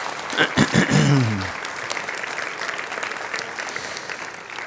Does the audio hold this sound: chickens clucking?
no